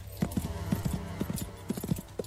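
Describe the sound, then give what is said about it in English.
Hooves clip-clop in a quick, bouncy rhythm as a horse canters actively with an upward stride, the beats grouped in uneven bursts over a low steady rumble. “You're going for a bouncy, active canter, so the horse has an upward stride.”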